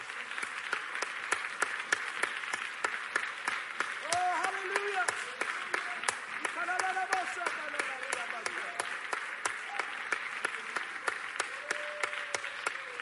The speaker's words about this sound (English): Give the Lord Jesus a great big hand clap.